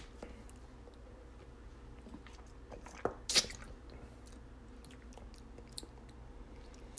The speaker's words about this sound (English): I'm just tasting if the water to pink lemonade ratio is any good. Just so I can like fuck with it. Cause sometimes it's not right.